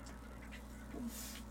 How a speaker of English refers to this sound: I hope you guys can't hear the dog that they definitely can. I hope you can. They definitely can.